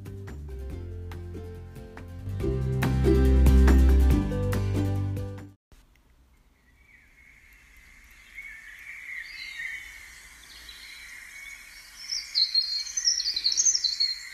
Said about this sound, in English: May we find resurrection in the song of birds and the chorus of dawn